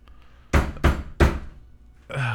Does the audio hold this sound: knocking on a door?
yes